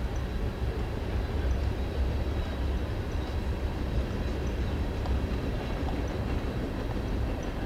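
A train rumbles past outside the right field fence of a ballpark during a baseball game, a steady low roar with faint metallic rail clatter holding constant throughout, with no voices present.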